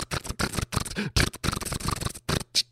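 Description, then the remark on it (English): A dense, rapid barrage of camera shutters clicking as the president talks, overlapping in quick bursts with brief pauses, loud and crisp with no voices. “But seriously, it's almost, it sounds like someone's sitting there like the president's talking in a typing class.”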